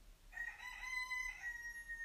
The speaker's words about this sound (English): Wow, rooster.